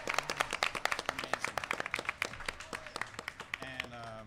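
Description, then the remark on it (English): A crowd claps steadily, sharp overlapping hand claps forming a dense burst of applause, with a few faint voices and tonal sounds mixed in underneath. “So give it up, baby.”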